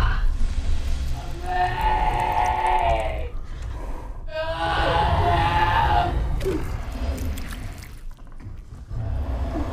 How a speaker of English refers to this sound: Matt from X-Rated Pod said that, like, the bear scream haunts his dreams. It is very, very creepy.